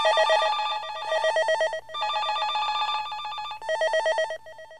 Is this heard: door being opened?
no